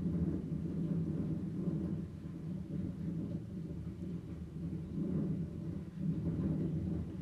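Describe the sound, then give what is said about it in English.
A steady, heavy gush of water dumped by a reverse cycle evaporative cooler on the roof pounds onto a tin roof near midnight, making a dense, low, rumbling roar that swells and eases slightly but never stops. No voices. “That actually sounds like it's burst a pipe.”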